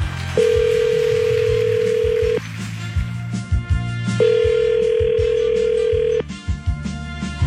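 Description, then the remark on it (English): A steady electronic telephone tone sounds twice in long two-second bursts with a gap between, over a busy, low, rhythmic background, as someone calls a person back from the main line; no one speaks. “I'm gonna call him back from the main line now.”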